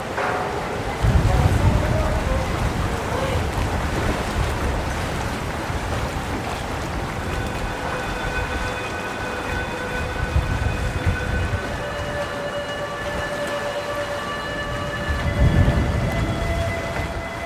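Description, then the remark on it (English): A flood alarm sounds in a square in Venice during a storm at night. Heavy rain roars steadily with deep rumbles of thunder, and partway through a sustained, multi-toned siren rises and holds over the downpour until the end. The flooding is beyond the alarm's 150-centimetre maximum. “And this sound, the alarm going off, it's well above actually what that alarm was designed to.”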